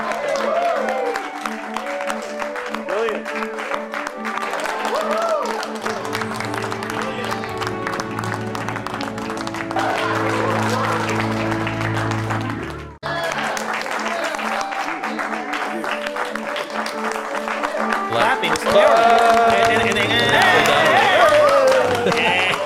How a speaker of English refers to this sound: Not only the length of the clap, but the sound. Like you would think they were done clapping.